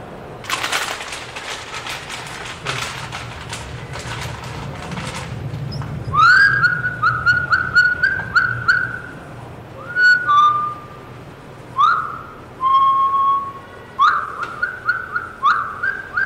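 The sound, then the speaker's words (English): A professional bird caller whistles an imitation of a bird call: bright, warbling phrases with quick pitch slides, repeated in bursts. Several seconds of crackling, rustling noise come before the whistling. “Professional bird caller. They have me go out with them on hunting trips and stuff all the time.”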